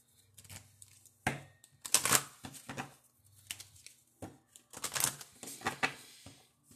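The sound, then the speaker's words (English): Papery riffling and snapping as a deck of oracle cards is shuffled, in several irregular bursts with brief quiet gaps between them; no one speaks. “Shuffling these.”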